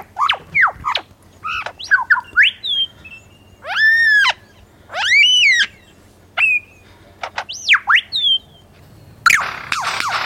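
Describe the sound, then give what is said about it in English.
A lyrebird runs through a loud, varied medley of mimicked calls: sharp swooping whistles, ringing arched notes, quick chirps, and a harsh rasping burst at the end, with no voices. “All right, so this is all genuinely a liar bird.”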